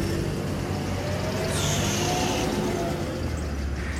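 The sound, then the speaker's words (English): A car rumbles by outside, its low engine noise holding steady for a few seconds with a faint higher whine partway through. Nobody speaks. “She jumps every time she hears a car.”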